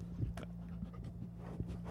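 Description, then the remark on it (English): A dog pants and huffs in short, uneven breaths, with a steady low electrical hum running underneath and no one talking. “Dogs.”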